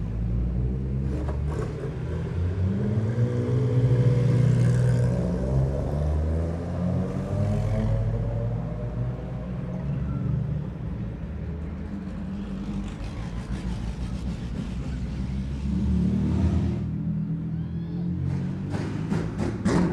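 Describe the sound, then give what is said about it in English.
A Ferrari sports car engine roars loudly as it approaches, revving through the gears with a deep rumble and rising pitch, then fading slightly before another surge of revs. “Here comes the Ferrari.”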